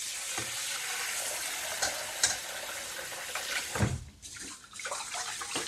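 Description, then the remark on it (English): Continuous swishing and crackling of rice grains being washed by hand in a bowl of water to rinse off the starch, with a few louder sloshes and clinks against the bowl and a brief lull near the end. “I like to pour it into a sieve and then pop it back into the bowl and wash it again.”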